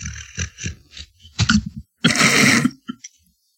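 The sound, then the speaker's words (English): A dog snoring: a few short, snuffly snorts followed by one longer, raspy, rattling breath, then quiet little puffs. No one speaks over it. “Now this fucking thing is snoring”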